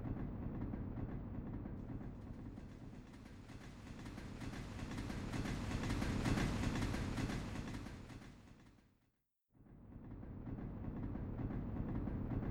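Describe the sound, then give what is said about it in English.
A train heading south after leaving a ruined university rumbles steadily along the rails, a loud, continuous rattling roar with faint rhythmic clatter, cutting out for a brief moment near the end before resuming. No one speaks. “Moving on from this issue, after leaving the ruins of Loughton University, the train headed south, and we were all surprised when we came to a rather sudden stop.”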